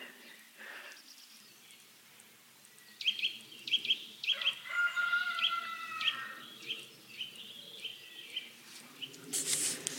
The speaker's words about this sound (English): I'm now heading up a green lane which wends its way to this sort of foothill or the shoulder of Blorenge Hill. Still got some roosters crowing.